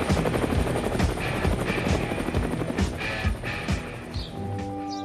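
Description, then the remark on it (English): A helicopter carries a crew away from the crater at the top of Mount Edgecumbe in Sitka, Alaska, after they set a stack of tires on fire; its rotor chops steadily with a dense, rhythmic whump, loud at first and gradually easing as it pulls away, the engine whine thinning out toward the end. No voices. “As thick black smoke began to bellow skywards, the crew got back in the chopper and headed home.”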